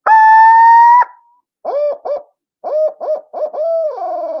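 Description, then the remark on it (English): A loud, shrill scream holds steady for about a second, then after a brief pause breaks into a rolling series of short, hitched hooting notes that end in a wavering trailing note: a call used to draw a gobble from a turkey. No one talks. “It's just a high, shrill pitch sound. And then they'll go into like a hitched roll note”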